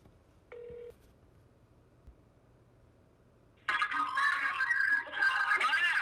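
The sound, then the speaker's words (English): A single short electronic telephone tone beeps once near the start over quiet background, followed after a pause by a loud, noisy stretch like a crowded phone line as an incoming call from an Indiana number connects. “We had a call come in a little bit ago while we had Ryan on the phone. Let's see who that was.”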